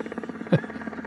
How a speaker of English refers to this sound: They're flying away in a helicopter.